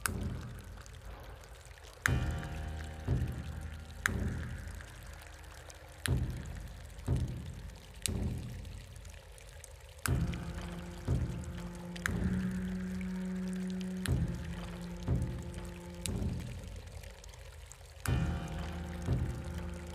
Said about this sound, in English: Drip, Splat